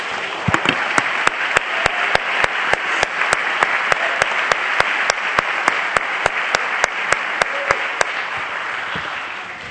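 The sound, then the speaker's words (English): A crowd claps steadily, with a loud, even rhythmic beat of unison claps running over a dense wash of scattered clapping, then fading out near the end. “Please be seated for a moment, and when you get down, clap your hands again and just invite him into your place.”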